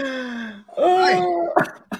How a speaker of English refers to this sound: Man, clear your throat. They choke in the background.